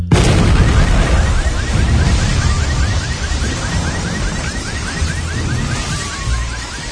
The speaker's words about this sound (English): Right in the middle of it, close enough to singe my eyebrows. They tell me the explosion broke windows 3 blocks away.